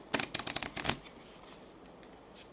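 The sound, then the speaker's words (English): A deck of treasure cards is riffle-shuffled to form a new treasure deck, a quick burst of crisp flapping clicks for about a second, then quiet room tone with a faint final tap. “When you run out of treasure, immediately shuffle and form a new treasure deck.”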